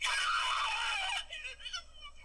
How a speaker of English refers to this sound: Ooh, that ow. Is the real scream of a woman breaking her coccyx. Here it is again.